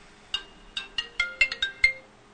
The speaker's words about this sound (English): That is an alarm on my cell phone to say, get on the air, idiot.